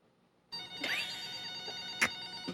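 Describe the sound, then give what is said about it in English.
A telephone rings with a steady, bright electronic tone that starts abruptly and holds continuously, fairly loud, with a few faint clicks and thumps in the background. “who wants to pick up? I mean, it's going to keep ringing, so.”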